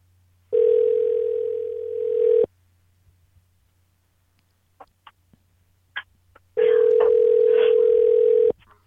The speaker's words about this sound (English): Making a phone call. Stand by. This is somebody from Georgia.